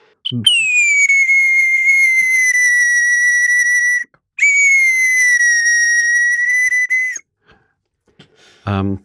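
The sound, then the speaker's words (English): Whistling imitates a nightingale's song: two long, steady, high-pitched whistled notes of several seconds each, separated by a brief gap, with short vocal sounds at the start and end. “So this is a nightingale.”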